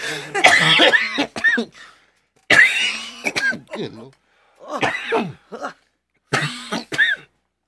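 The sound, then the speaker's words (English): A loud coughing fit comes in several rough bursts separated by short pauses, with harsh throat clearing mixed in and a few strained vocal sounds between the coughs. “Captain Cough. I'm back.”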